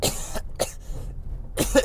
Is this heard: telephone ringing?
no